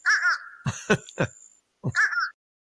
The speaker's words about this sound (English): So here's the fish crow. Fish crow.